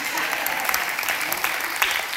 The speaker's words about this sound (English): And the people who are applauding the most are the women.